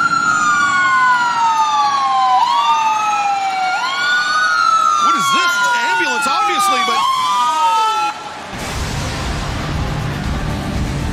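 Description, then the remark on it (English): Several emergency vehicle sirens wail loudly at once, their rising and falling tones overlapping in a dense, continuous chorus before giving way abruptly to a noisy, roaring wash of sound. “The sound of sirens and...”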